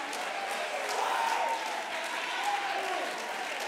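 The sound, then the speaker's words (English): An audience claps steadily in praise of God in a dense, continuous patter, with faint crowd voices and a brief high vocal tone rising above the applause now and then. “You see these folks shouting. You see these folks singing. You see these folks clapping.”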